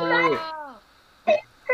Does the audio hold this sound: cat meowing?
yes